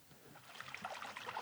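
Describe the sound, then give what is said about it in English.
Water splashing and lapping in an irregular, bubbly wash of sound, like a paddle or small boat moving through it, steady and moderately loud with no voices. “Water. Just water.”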